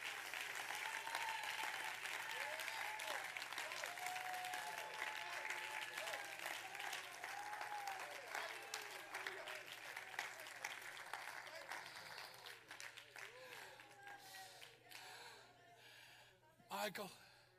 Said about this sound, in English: Stand to your feet, somebody. And would you clap your hands and worship the Lord today?